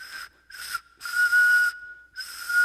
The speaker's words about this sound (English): And so we would carry around like a spent rifle cartridge, because these carry a long ways if you just kind of blow into it, like.